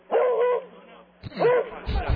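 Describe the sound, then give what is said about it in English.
A beagle lets out two drawn-out, baying barks in quick succession, loud, with a short pause between them and some low rustling at the end. “So, Uno the Beagle... won the dog show, but that's the first time a beagle's ever done it.”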